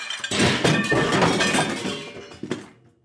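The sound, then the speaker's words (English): A loud, sustained crash of many dishes breaking at once, with shattering ceramic and glass clattering for a couple of seconds, then a final smaller crunch as pieces settle. No voices. “A few minutes later, along with the banging, I heard what sounded like a bunch of dishes crashing and breaking.”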